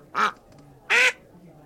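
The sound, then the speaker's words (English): A person imitates a duck with two loud, nasal quacks about a second apart, with a quiet background between them. “Do you speak duck? I do speak duck. Well, then what'd he say?”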